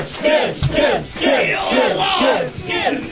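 A crowd of voices cheers and chants a contestant's name loudly in steady rhythmic bursts during a ticket giveaway, many people yelling together with no pause for the full few seconds.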